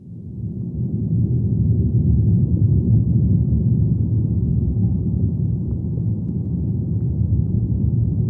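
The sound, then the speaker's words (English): Hydrophone plugged into a tree's roots records its leaves rattling in thunderstorm wind: a deep, muffled, continuous rumble that swells in over the first second, then holds steady and loud, like a train, with no voices. “So that's the sound of, you know, the leaves, I think, rattling on the tree in a thunderstorm.”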